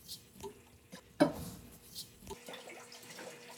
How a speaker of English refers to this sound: Well, this is an antibiotic called lincomycin. Antibiotics like this are regularly put in the drinking water or added to the feed of healthy animals, most of the time without a prescription. empty the antibiotic into the water.